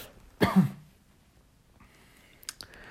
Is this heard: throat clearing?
yes